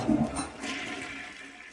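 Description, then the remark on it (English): A toilet flushes, starting with a sharp rush of water that settles into a steady, swirling gurgle as the bowl drains, with no one talking. “He said, try flushing it the other way.”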